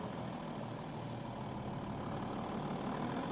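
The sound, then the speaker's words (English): A small Volkswagen four-cylinder diesel engine idles steadily with a continuous low, rattly rumble and no pauses, moderately loud, with no one speaking. “Little Volkswagen diesel.”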